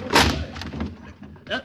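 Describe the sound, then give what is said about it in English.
A door is forced open with a loud crash, followed by a few scattered thuds and rattles as it gives way, then a brief voice near the end. “Break the door down.”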